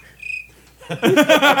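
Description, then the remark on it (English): A short, clear cricket chirp sound effect rings out on its own for under half a second, then loud voices burst in and drown out the quiet. “Give us a cricket. Can we get some cricket?”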